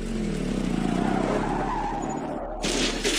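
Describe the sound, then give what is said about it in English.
Hecate Hopkirk's motorbike skids and crashes in the final moments of a 1971 gang leadership race: a loud, sustained tire squeal over engine roar for about two seconds, a brief drop-off, then a sudden harsh burst of crashing noise. “In the final moments of the contest, Hecate crashed.”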